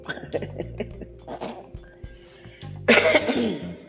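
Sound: coughing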